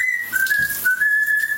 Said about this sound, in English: Finally, it's not just humans who do this. Look who's singing in the shower. Okay, it's not the rainforest, but this bird sure does seem to be enjoying himself.